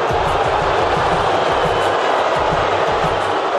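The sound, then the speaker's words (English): A huge crowd of tens of thousands at Nathan Phillips Square, gathered to cheer on the Raptors, boos Ontario premier Doug Ford as he is introduced, in a loud, unbroken roar that fills the whole clip, with low rumbling swells pulsing underneath and no single voice standing out. “He was introduced and, you know, a crowd of tens of thousands booed the premier. Let's listen to that,”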